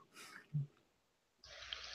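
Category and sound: food or drink, sipping water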